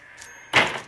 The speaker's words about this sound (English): The door's opening. I'm on my way in to see Mr. Featherstone.